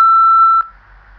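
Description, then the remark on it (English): A single loud, steady electronic beep like a voicemail prompt tone, lasting about half a second and cutting off cleanly, followed by faint low background hiss. “Pause this audio after the beep sound and say out loud what you want to say.”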